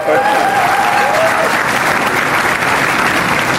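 A crowd applauds steadily for Senators Shaheen and Hassan and Congresswoman Custer, a dense wash of clapping that holds at full volume for the whole stretch, with a brief voice or whistle-like tone rising faintly near the start.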